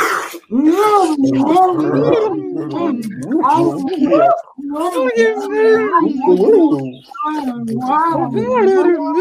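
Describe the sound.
Voices imitate monkeys with loud, continuous hooting, grunting and gargly vocal noises, several people joining in, mixed with wet slurping sounds of eating a mango noisily.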